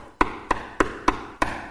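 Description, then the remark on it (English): Five firm knocks on wood in a steady, slightly uneven rhythm, each a sharp hollow rap with a short resonant ring, heard alone with no talking. “And he had to knock.”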